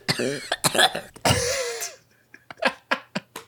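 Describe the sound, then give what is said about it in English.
A loud coughing fit: a few harsh bursts, a long raspy hacking cough, then a run of shorter, quieter coughs trailing off, with no talking. “feel like they're coughing it up in the end”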